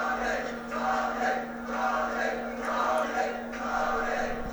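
A large crowd at a fight roars and cheers continuously, the din swelling and easing in several waves over a few seconds, loud and dense with no single voice standing out.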